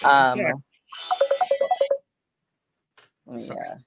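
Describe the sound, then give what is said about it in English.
A WhatsApp call ringtone on a phone chirps out a quick run of about nine evenly spaced melodic beeps lasting roughly a second, fairly loud, with people talking just before and after. “I was ringing too. Oh yeah, no. It's the Canadians calling on the WhatsApp.”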